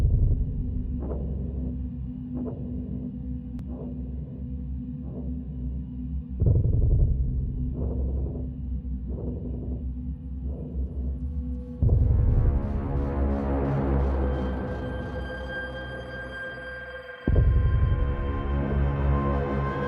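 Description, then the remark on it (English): A deep, sustained droning vibration from a film score, steady pulsing throbs riding over it at first, then a swelling layer of higher tones surges in, with another low swell near the end. “And that's what this does so cleverly, is that you hear this kind of, I mean, I'm not sure how you created it, but it's kind of got a sort of drone element to it.”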